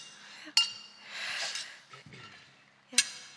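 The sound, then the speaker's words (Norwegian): Wine glasses clink together twice in a toast, two bright ringing taps about two and a half seconds apart, with soft breathy background noise in between. “Vi må ikke glemme at skåle. Nej, skål. Skål. Skål.”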